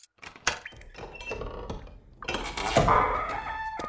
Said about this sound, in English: Damn it, there are so many keys. This one.